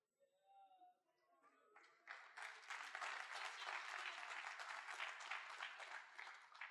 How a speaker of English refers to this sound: Please clap again properly. I have said a very powerful point.